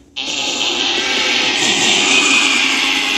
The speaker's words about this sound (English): We sound the double gremlin alarm, whatever that is? Is that just me playing it layered over itself twice? Yes. So it sounds like a nightmare? Sound alarm.